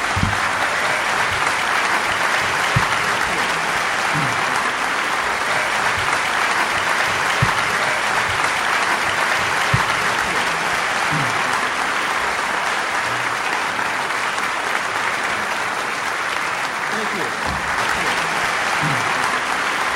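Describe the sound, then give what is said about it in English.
Sustained, dense applause from an audience at the City Opera House in Traverse City for crime novelists Elmore Leonard and Peter Leonard at a Traverse City National Writers Series event, a steady wash of many hands clapping at an even, loud level for the full twenty seconds with no voices standing out. “Thank you both for coming, and let's have a big round of applause for these guys.”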